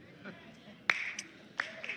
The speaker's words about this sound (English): A rather weak golf clap when I talk about paying taxes.